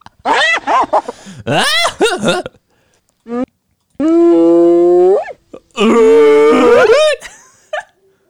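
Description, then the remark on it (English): A person does a hyena impression: rapid, whooping, giggling yelps rising and falling in pitch, then a long sustained wavering cry, followed by another burst of high cackling calls, loud. “Which one of us imitated a hyena better?”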